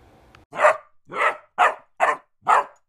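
A dog barks five times in a steady, evenly spaced rhythm, each bark loud, with no voices, in Garfield Park, a park that is not a dog park.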